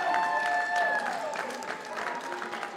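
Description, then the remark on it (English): A wrestling crowd at George South's final match applauds steadily, with a dense wash of clapping and a few sustained voices or whistles rising over it early on, shouting "Thank you, George," all at an even, moderately loud level. “And the crowd is there to show their appreciation for George South.”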